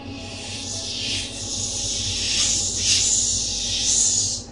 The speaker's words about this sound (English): A lot of hissing, a lot of slithering. I think there might be a few snakes on the other side.